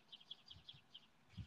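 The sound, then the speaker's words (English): A small pet bird chirps in a quick series of high, thin tweets, about six short calls in a row, fairly quiet, with a soft low thump near the end. “I think the bird likes that idea. The bird really wants some news.”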